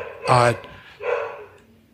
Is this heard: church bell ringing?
no